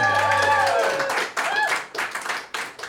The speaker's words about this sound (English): And there's lovely good folks that have filled up the room, as I'm sure you can hear their lovely applause.